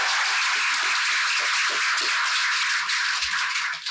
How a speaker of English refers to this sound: Thank you very much. So a round of applause. Thank you.